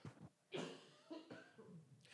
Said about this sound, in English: Excuse me, cough break.